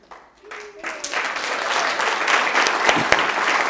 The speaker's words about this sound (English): Can you pick up them last two cards and everyone... hopefully, we'll give you a round of applause.